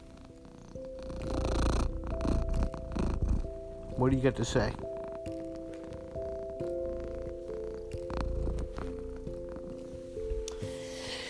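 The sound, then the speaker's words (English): A cat named Fuzz purrs steadily, a low continuous rumbling drone running through the whole recording, with a person briefly speaking over it partway through; recorded on a Tuesday night at 8:34 p.m., 40 degrees outside. “Let me see if you can hear fuzz purring.”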